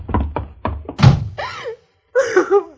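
A door is shut and locked with a quick run of heavy thuds and clunks, fairly loud. A voice then calls out twice, straining and raised.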